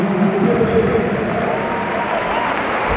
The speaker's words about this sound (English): Applause there for Dani Nomaso. He's going off. Pepe's coming on.